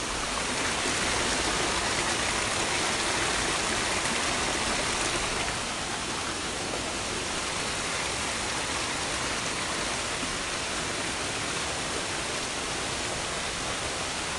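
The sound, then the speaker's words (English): Flowing river water rushes steadily over rocks and through pools in Honduras, a loud, continuous hiss-like roar, easing slightly in level partway through, with no voices. “You guys can probably hear the water.”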